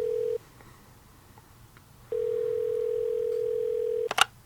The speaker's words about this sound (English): Who do you want to prank call? I was thinking, you know, I'd call them my old friends and rivals. Let's dial it now. Okay. It's going through.